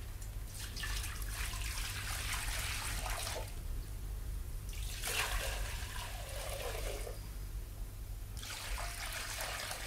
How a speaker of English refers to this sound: All six pots are filled to the brim with water.